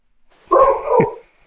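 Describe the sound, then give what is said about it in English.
A mixed-breed rescue dog lets out a drawn-out, whiny bark followed by a short second yip, fairly loud, with no talking over it. “There's the dog.”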